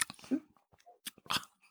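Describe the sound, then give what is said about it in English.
Wet sipping and slurping of wine taken right into the microphone, a few short bursts spread over under two seconds, with small mouth clicks between them and no talking. “Sip it right into the mic,”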